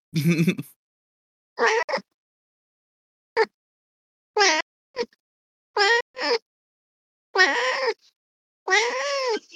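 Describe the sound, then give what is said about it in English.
A female cat, held in someone's arms like a baby, yowls and meows over and over, roughly nine drawn-out, wavering calls separated by short silences, loud with no talking. “What's wrong with your cat? She's drum rolling.”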